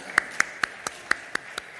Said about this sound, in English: That's a pretty good place to clap right there.